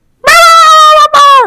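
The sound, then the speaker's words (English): A voice imitates a dog's high-pitched yelp: two loud, drawn-out whining cries close to the microphone, the second one shorter and trailing off downward. “You guys remember the Flintstones dog? Dino?”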